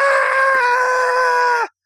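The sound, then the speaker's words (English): A single loud, sustained human scream, high-pitched and steady, held for under two seconds before cutting off abruptly into silence. “He just woke up with the screaming.”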